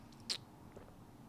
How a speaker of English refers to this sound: Sorry for that little slurp. That's really good. I can't lie.